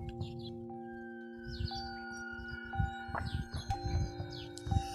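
Birds sing outdoors at 6:20 a.m. on Saturday, June 20th, 2020, in the Midlands, on an overcast, cloudy morning, with scattered chirps and short trills over a steady low hum and soft rumbling background noise. No one speaks.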